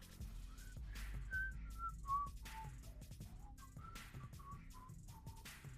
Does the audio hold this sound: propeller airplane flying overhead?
no